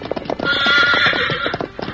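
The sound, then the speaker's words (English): Rapid, steady hoofbeats of the galloping horse Victor drum throughout as he gallops toward the Lone Ranger and Tonto, while a loud, shrill whinny rises over them through the middle and then fades as the hooves carry on. “The brave animal's flying hoofs knocked them sprawling for the moment, and without slowing pace, Victor galloped toward the Lone Ranger and Tonto.”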